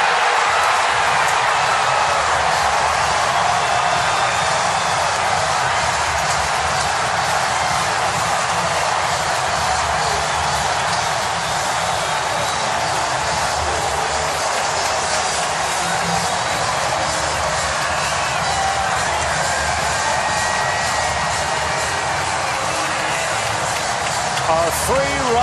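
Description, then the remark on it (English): A baseball stadium crowd roars after Bryson Stott hits a home run to right field against the Braves, a loud, dense wall of cheering and yelling that stays steady for the whole stretch, with Braves TV announcer Chip Carey not speaking over it. “You want to capture what the crowd is doing, but come on.”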